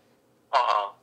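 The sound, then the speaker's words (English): A single short burst of a telephone ringing, a bright buzzing electronic trill that is fairly loud, then cuts off into near silence. “And then the phone rings.”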